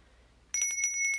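A bell suddenly starts ringing, a rapid, bright metallic trill with steady high tones, loud, continuing without pause after a brief quiet moment.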